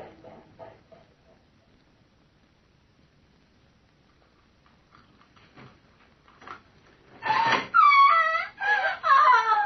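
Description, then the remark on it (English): After several seconds of near silence with faint ticks, a woman, Dr. Manette's patient, screams in a run of loud, high-pitched, wavering cries that rise and fall. “What was that scream I just heard?”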